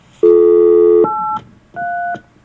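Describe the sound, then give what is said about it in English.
Telephone dialing tones of a call to a company: a long, steady electronic tone, then two shorter keypad beeps separated by a brief pause, loud with no voices. “If you want to complain about a company, you could try ringing them up.”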